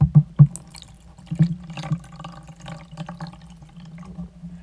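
Water is poured steadily from a glass into a device with nose pillows, opening with a few splashy glugs, then settling into a continuous trickling stream with no voices.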